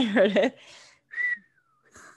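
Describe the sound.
A person whistles weakly: one thin, breathy note that slides downward for under a second, preceded by a brief warbling vocal sound and followed by a short breathy noise.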